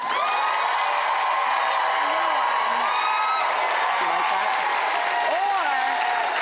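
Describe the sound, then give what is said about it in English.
Loud, sustained applause from a game show audience voting for the winner of a game, with cheering and excited shouts rising over the steady clapping, continuing without a break for several seconds. “Whoever gets the most applause is our winner.”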